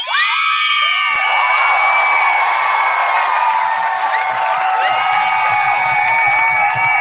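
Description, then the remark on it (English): A loud crowd-cheering sound effect: the crowd cheers and screams continuously for about seven seconds, a dense wash of high-pitched shouts, whoops and yells layered over one another at a steady, sustained level. “Oh, it's so good to have sound effects, like y'all just don't know.”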